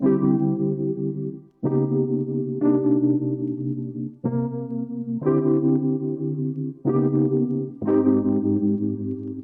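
A hip-hop remix beat, one of three entries in a remix contest that listeners vote on, plays loudly: thick, distorted synth chords hit in a steady repeating pattern about every second or so, with no voices over it.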